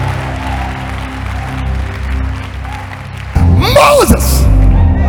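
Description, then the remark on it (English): A low, steady murmur gives way about two-thirds through to a sudden loud burst of audience clapping, mixed with raised voices and shouts that carry on to the end. “Anybody clapping if this happens?”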